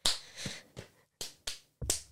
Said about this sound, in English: Oh, you just have the body slapping.